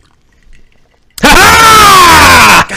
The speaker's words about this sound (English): You fucking yelling in the microphone like, I was not prepared for you screaming. That just makes it funny.